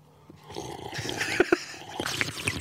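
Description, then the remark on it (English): Someone drinks water, with two distinct gulping swallows in quick succession set against breathy, rumbling noise. No one speaks. “Very soothing to hear someone drink water.”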